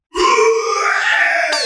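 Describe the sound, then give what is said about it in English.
A pig named Chance lets out one long, loud grunt lasting over a second, a buzzy, harmonic, slightly nasal tone that holds steady and then cuts off. No one speaks. “Let's hear it, pig.”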